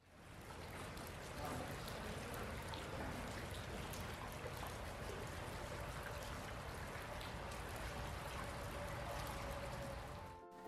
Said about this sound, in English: It's actually dripping off of the Highway 6 bridge, and you hear the movement of water.